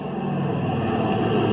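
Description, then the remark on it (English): A low-flying plane with white flags on its wings roars overhead, its engine drone loud, dense and steady, swelling slightly toward the end, with no voices. “No plane comes in that low unless it's going to do something.”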